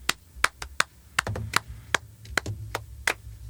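Sparse, irregular hand claps, about a dozen sharp, bright smacks over a few seconds with uneven gaps, like a small scattering of applause rather than a full crowd. No one speaks.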